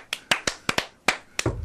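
About eight sharp, hollow knocks on a woodblock, fairly loud, struck in an uneven, quick pattern with short gaps, ending in a brief low rumble.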